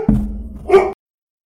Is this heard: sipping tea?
no